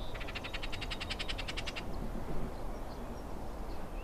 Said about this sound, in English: But then they have the exact opposite, because they are really, one of the ways you can pick that bird out is they have a real kind of agitated rattle, you know, raspy. Yes. You know, you hear it a lot.